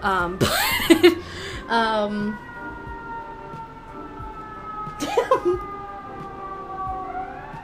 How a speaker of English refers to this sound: Sorry, there's sirens. You know, the city is always whack.